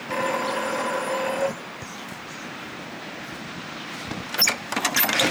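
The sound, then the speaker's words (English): A door buzzer sounds once in a steady, harsh electric drone for about a second and a half, then stops, leaving low outdoor rumble and a few faint clicks and rattles. “I'll ring the buzzer.”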